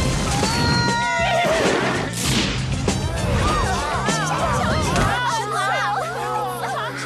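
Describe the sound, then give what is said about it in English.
A horse whinnies during a joust amid a noisy, cheering crowd, with clattering impacts and a sharp crash partway through; the busy commotion stays loud throughout. “the son of Prince Charming is bound to be a great jouster. The horse does all the work.”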